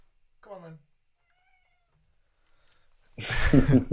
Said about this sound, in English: So hold on, my cat's meowing.